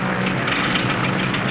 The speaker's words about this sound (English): Hey, what's that? Engine trouble, sir. We'll have to go back to the field.